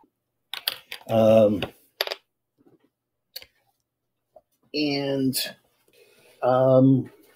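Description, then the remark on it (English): Several sharp, small clicks of a pen top being pressed nervously come in an uneven run, fairly crisp, with short voiced hums from a person in between. “So you continue your way, clicking the top of your pen nervously, knowing that something is coming around the corner.”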